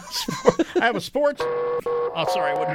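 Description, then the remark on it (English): A voice speaks briefly, then a steady electronic alarm sound effect, played on a show as a sports question comes up, takes over, a sustained buzzy tone with a small break and shift partway through, holding at an even loudness. “That alarm plays every time I talk about sports because I don't like sports and I don't talk about it.”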